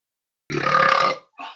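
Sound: loud burp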